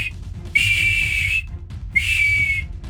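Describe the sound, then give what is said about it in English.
Someone whistles two long, steady high notes, each held for nearly a second and separated by a short pause, with a low rumbling background underneath. “now you hear whistling.”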